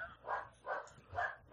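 A dog barks three times in quick, fairly even succession, each bark a short, full burst at moderate volume with a little room echo, and no one speaking.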